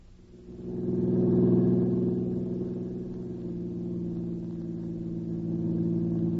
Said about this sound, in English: Yeah, I'm sure tired to do nothing but driving around in this car.